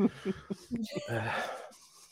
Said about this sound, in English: Breathing right. Rather heavily considering you've just done a walk to and from the kitchen.